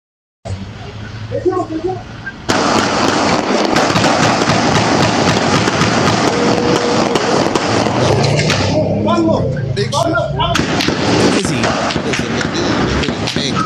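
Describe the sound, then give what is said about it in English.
Rapid bursts of gunfire crackle through a loud, chaotic shootout in a city street, dozens of sharp overlapping shots over dense roaring noise, with voices shouting in the background. “So there's a shootout going on. We'll play the shootout and then we'll go from there.”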